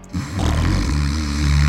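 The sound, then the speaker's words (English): A single long, loud snore from a grandmother, a deep raspy drone that holds steady for a couple of seconds with no talking over it. “Yeah, plus grandma is snoring.”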